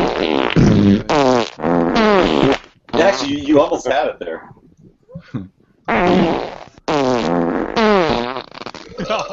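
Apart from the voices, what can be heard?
fart sound effect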